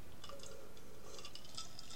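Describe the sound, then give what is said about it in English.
Fizzy water mixed with Mountain Dew being poured into a glass, with a soft crackling fizz and faint ringing tones rising as it fills. Quiet, with no talking. “Okay, so, I'm having something to drink.”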